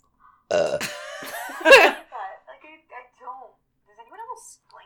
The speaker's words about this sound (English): Excuse me, I burped.